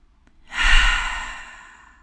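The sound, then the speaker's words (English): A single deep, slow exhale during a guided breathing exercise, breathy, swelling quickly then fading out gradually over about a second and a half, with no talking. “And as you breathe into this space with a few deep breaths, inviting in those parts of you that feel a little under-resourced, locating those spaces within your body.”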